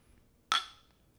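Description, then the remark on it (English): A single bright clink of beer glasses meeting in a toast, with a short ringing tone that fades within a fraction of a second against a quiet background. The beers are IPAs. “Sounds a little bit different than the wine glasses. Mm-hmm. Beer this time.”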